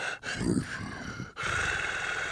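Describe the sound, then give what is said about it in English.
A person imitates a big cat's growl: a rough, breathy rumble, a brief catch for breath, then a second sustained, raspy snarl that runs on steadily. “Dude, you got a good ass fucking lion or tiger.”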